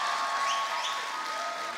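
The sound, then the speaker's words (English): A downstairs crowd in Los Angeles, California claps steadily, a dense, even wash of applause that stays fairly loud throughout with no voices standing out. “We got a good downstairs clap. I don't know about the upstairs.”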